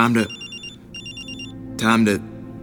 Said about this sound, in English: Time to answer the phone.